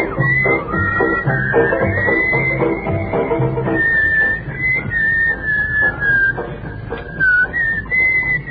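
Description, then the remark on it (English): A member of an audience whistles a continuous, wavering tune above the murmuring crowd, the piercing melody sliding up and down in pitch for several seconds amid chatter and rustling. “Someone in our audience, I think, is whistling.”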